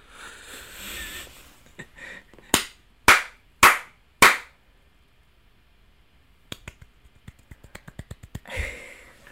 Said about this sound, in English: It was like a little, it was like four, an audience clap. 4 with a pity pat. It was a little like, yeah, pity pat or golf clap, something like that.